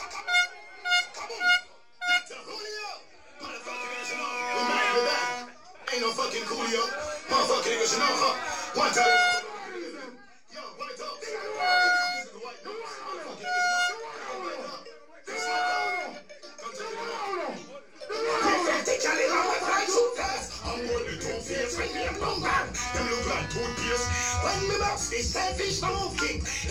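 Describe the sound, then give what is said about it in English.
Live sound clash audio: loud shouting voices over bursts of blaring horn blasts and crowd noise, then a heavy, bass-driven music track kicks in and pounds steadily for the final stretch. “This is the sound. Live audio from the Clash right now, so people.”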